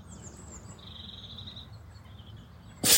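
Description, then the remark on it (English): Birds chirp softly over a low outdoor hum on a damp, cold morning, then a sudden loud sneeze bursts out right at the end, cut off abruptly. “Bless you.”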